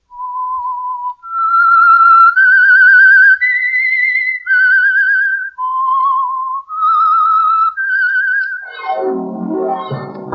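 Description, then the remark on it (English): A lone, clear whistled melody of slow sustained notes rising and falling for several seconds, the theme introducing a radio mystery drama, fairly loud, before a short burst of fuller, noisier sound cuts in at the end. “That whistle is your invitation to another Meisterbrau mystery drama presented by The Whistler.”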